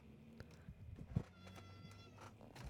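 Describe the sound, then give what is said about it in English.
A cat walking across a desk gives a soft, drawn-out meow over a faint background hum, with a brief low thump just before. “My cat's, like, walking across my desk.”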